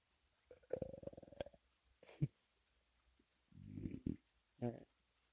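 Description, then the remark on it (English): A series of croaky, gurgling burps, about four bursts over a few seconds with short pauses between, fairly loud, with no talking. “you can burp, but it's also air escaping my esophagus so that I can have a better time breathing.”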